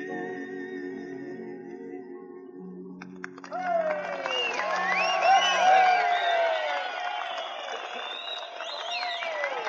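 audience applause and cheering

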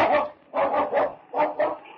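dog barking

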